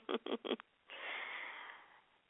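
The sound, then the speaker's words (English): Three quick, rasping throat-clearing bursts from a tickle in the throat during pollen season, then a long, breathy, wheezy exhale that slowly fades. No one speaks. “Had a tickle in my throat.”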